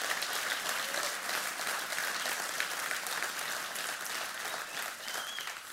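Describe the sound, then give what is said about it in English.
Sustained audience applause for the staff at a church service, a dense wash of many hands clapping at a steady level for several seconds, with no voices standing out. “Would you please just give a huge round of applause to the staff here right now?”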